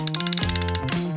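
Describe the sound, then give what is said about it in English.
A ratcheting wrench clicks rapidly in a steady, even rhythm for about a second, loud, layered over a sustained tonal hum that shifts pitch partway through. “Wrench.”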